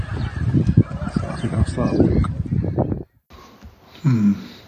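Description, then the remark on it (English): Canada geese grazing on grass by a lake along the Blackwater Valley path on a grey, breezy day honk and chatter in a busy, overlapping stretch. After a brief lull, one louder honk rings out, with faint voices mixed into the background. “There are many geese nibbling the grass by the lake, by the lakeside.”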